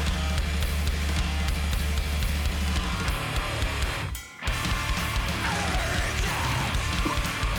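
Loud, dense hardcore metal by a band from Salem, Massachusetts, with distorted guitars, pounding drums and harsh screamed vocals, playing continuously apart from a brief cut near the middle.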